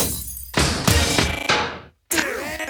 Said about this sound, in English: The intro, it's super unique. Hold on. You know what? Can we back it up just a little bit? There's like glass breaking.